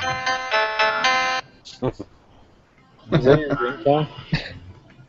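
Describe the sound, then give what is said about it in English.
A brief, bright electronic jingle of quick repeated notes from the soundtrack of the Japanese import Dreamcast version of a video game, resembling the Quagmire ringtone from Family Guy, plays loudly for about a second, followed by a pause and then people talking. “That's part of the soundtrack, I believe.”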